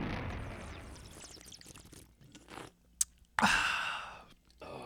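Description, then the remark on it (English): A cold beer can hisses open with a sharp crack, followed by fizzing and noisy gulping and slurping as it is drunk, then a second sharp pop and a burst of breathy exhaling. “Crack one open, a cold one with your boys here on a Thursday.”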